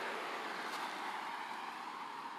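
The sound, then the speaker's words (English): A steady, even wash of road traffic noise outdoors on the streets during an early-morning walk, like cars passing, holding a constant low roar throughout with no voices. “You will hear cars and stuff.”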